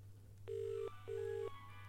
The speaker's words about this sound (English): I dialed the phone. I hear ringing down the line. And then we hear ringing in the den.